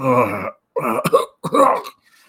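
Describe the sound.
A voice imitates a series of coughs and throat clearing: a harsh, drawn-out rasp, then two quick raspy bursts with short pauses between, fairly loud.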